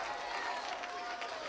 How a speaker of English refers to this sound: could you clap your hands unto the Lord and give him a great shout, believing that God is not done yet? Hallelujah! Come on, clap like you believe it.